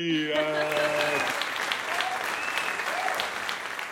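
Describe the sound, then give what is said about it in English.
An applause sound effect: a burst of steady, crowded applause fills the whole clip at a loud, even level, with a brief held musical tone at the start that fades out within the first second. “But you're going to get lots of real applause in your life and career now.”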